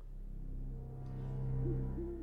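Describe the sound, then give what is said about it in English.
Low, soft owl hoots rise over a dark, droning ambient background, with a couple of short hooting calls toward the end, in a spooky forest scene of a music video; no one speaks. “So spooky forest with some hooting owls and a stag with glowing antlers.”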